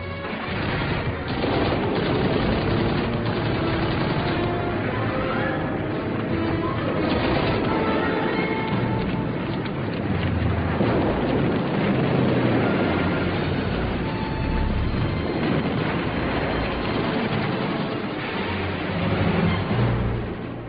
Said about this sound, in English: the squadron of worn-out fighter aircraft screamed down above the riverbanks, laying down heavy fire with their winged machine guns